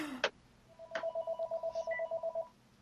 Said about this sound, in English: I'm sorry, I can't turn off the phone. No worries. I'm supposed to. Well, I'll let you just cut it out later.